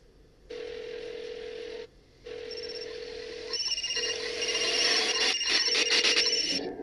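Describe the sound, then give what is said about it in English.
Phones ring in steady repeated bursts with short gaps, a bright electronic tone that grows busier and more layered, overlapping with rising clattery noise toward the end, in the opening scene of a movie trailer after shots of cell towers. No one speaks. “And then you hear like the phones ringing and things of this nature.”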